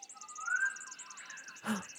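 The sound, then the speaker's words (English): A Pacific koel, a very glossy dark bird on a power line, gives a drawn-out, rising whistled call in the morning, followed by a short harsh burst, while a steady pulsing chorus of insects trills in the background. “It's coming from that very glossy dark bird on the power line.”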